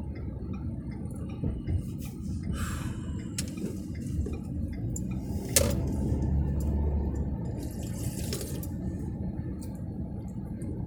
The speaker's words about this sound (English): Sorry for those sips, man, but I needed that. Really needed this shit, man.